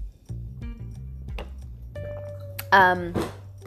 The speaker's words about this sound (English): I'm just gonna take a sip of water, so my throat is parched.